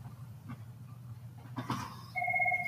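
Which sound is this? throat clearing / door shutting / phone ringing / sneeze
phone ringing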